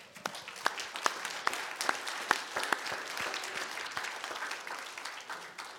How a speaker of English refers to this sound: Bible says all the angels rejoice in heaven every time someone gives their heart to the Lord, and so that we join in with them when we applaud.